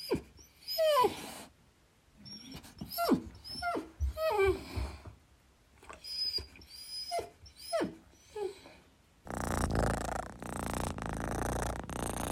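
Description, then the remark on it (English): Oswald the pet dog gives a string of high, whining yelps and squeals for about nine seconds, then a steady purr from Isley the pet cat rumbles on alone until the end. “So enjoy these pet noises now.”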